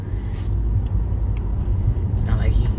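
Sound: car interior road rumble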